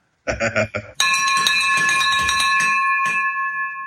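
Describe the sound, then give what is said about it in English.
A hand-rung victory bell clangs loudly, its bright metallic ring sustaining, then struck again near the end. A brief burst of voice comes just before the first ring. “Like, hold on one sec, because that's worthy, very worthy of a victory bell.”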